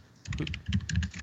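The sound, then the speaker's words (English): Rapid clicking of keys on a computer keyboard as someone types an email, a quick run of moderately loud taps in uneven bursts, with no voices. “And somebody's typing an email to somebody.”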